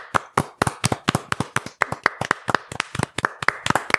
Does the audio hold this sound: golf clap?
yes